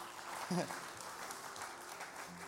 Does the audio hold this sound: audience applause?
yes